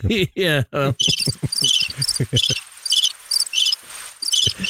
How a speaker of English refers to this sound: Crickets.